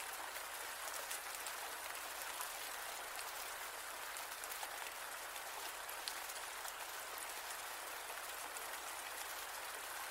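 Steady rain falls throughout, a dense, hissing patter of countless drops with faint crackles on top, constant in level with no voices or other sounds.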